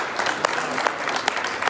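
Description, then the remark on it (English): A crowd applauds the speaker's wife steadily, many hands clapping in a dense, even wash of sound with a few sharper individual claps popping out at moderate loudness. “And as long as they're all clapping, at the risk of distracting from my message, some of you know this, but”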